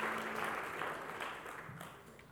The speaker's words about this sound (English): Let's give the worship team a hand clap as well. Thank you guys so much. Thank you for sharing your gift with us.